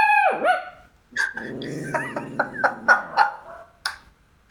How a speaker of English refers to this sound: That was a puppy bark. That's the younger dog, isn't it?